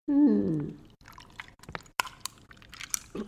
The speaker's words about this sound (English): You just open it and pour it over ice.